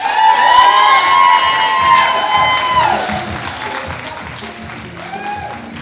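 A crowd applauds and cheers, with loud high-pitched whoops and shouts riding over steady clapping that gradually eases off toward the end.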